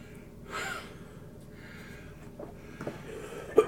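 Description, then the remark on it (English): A single short, breathy sneeze bursts out with a hissy, airy rush, followed by quiet shuffling and a couple of small knocks. No one speaks. “Bless you.”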